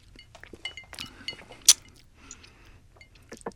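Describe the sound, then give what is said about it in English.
A single bright, ringing clink of glasses touching in a toast with brown derby cocktails stands out sharply, surrounded by faint clatter and soft handling noises, with a low hum underneath. “Right, cheers.”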